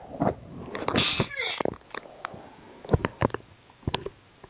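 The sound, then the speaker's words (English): A single sudden, strained sneeze, harsh and pained-sounding, surrounded by breathy gasps and a few small clicks and rustles. “I sneezed.”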